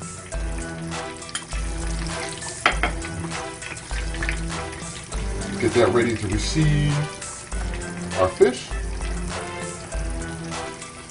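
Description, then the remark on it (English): Steady hissing sizzle of catfish shallow frying in hot oil, continuous, running beneath a man talking with a rhythmic music bed in the background. “Now I'm shallow frying, I'm not deep frying, of course.”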